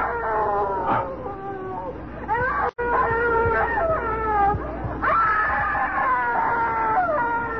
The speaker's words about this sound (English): It's her, Dad. It's the screaming woman.